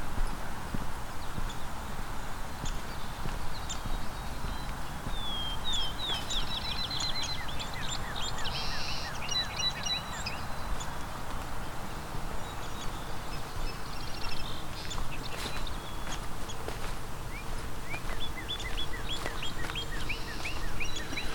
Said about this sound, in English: Is a northern cardinal singing? And these short little, there's the northern cardinal again. These short little squeaks are downy woodpecker. It's got that downy descending call.